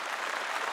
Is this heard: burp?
no